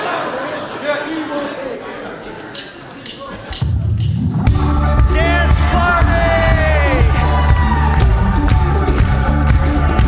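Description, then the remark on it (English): A loud crowd at a worship gathering yells and cheers, starting as a murmur of many voices and then erupting halfway through into sustained, overlapping shouting of "Dance party" that keeps going to the end as the dancing begins. “We're going to yell, "Dance party," then we're going to dance.”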